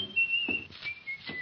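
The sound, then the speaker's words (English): A man whistles a short tune after slamming the front door, holding a few clear notes that glide slightly in pitch, fairly quiet, with a couple of soft thuds underneath. “He slammed the front door and he was whistling.”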